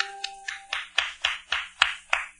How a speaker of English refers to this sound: Why the applause, sailor? Because I like Calypso songs